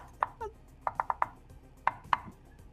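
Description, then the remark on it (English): A secret knock on a door: seven sharp raps in the familiar shave-and-a-haircut rhythm, a quick run of knocks, a pause, then two firm closing knocks, with no talking. “Wait, I gotta do my secret knock.”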